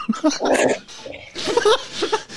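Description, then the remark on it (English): A dog, Barks, whimpers and yips in two quick bursts of short, high-pitched, whiny cries separated by a brief pause, fairly loud with no talking. “We can invite more dogs to join Special Chronicles. Come on, Barks.”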